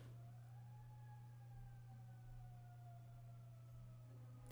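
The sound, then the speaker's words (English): An emergency siren holds a long, steady wail that slowly sinks in pitch, faint but continuous, over a constant low electrical hum with no one speaking. “Sorry, the sirens are getting to me because the sirens are going off.”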